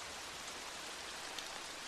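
Steady, even hiss of rain falling, a soft continuous wash of drops with no pauses, fairly quiet and without any voices.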